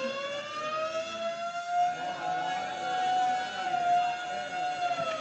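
A loud, shrieking prison siren wails continuously, its pitch swelling and dipping slightly over several seconds, with dense, frantic alarm bells ringing underneath and no voices.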